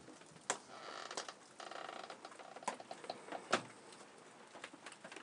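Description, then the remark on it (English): Light rain pattering outdoors, a soft, steady hiss of drops broken by a few sharper drips and taps, fairly faint and with no voices. “Well, the rain's kind of died down a little bit.”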